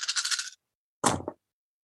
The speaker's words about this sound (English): I rolled an obscene amount of dice just then. I heard all of them coming up when you were rolling them. It's such a pleasant sound.